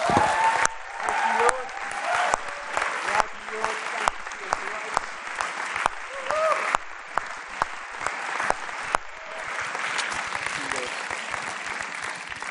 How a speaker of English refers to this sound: Can I just encourage you? Why don't we just clap God and thank him for his faithfulness and goodness?